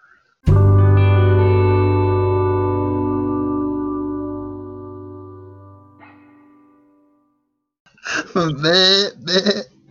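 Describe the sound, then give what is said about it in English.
A long, ringing musical tone fades slowly. After a short pause, a voice gives a wavering, quavering imitation of a goat's bleat, fairly loud, lasting a couple of seconds. “Yeah, I don't know why we've got the goat noise when we're talking about sheep.”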